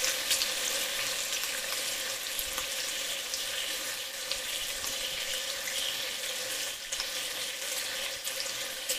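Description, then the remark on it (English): Bacon sautés in olive oil in a pan over moderate heat to brown lightly, a dense, continuous crackle and hiss with no one talking, lasting the whole stretch without a break. “So saute the bacon in the oil over moderate heat for 2 to 3 minutes to brown lightly.”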